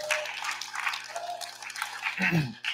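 An audience claps steadily for a few seconds for a boy coming forward to help with an illustration, a dense, even patter of many hands, with a brief shout or cheer rising over the clapping near the end.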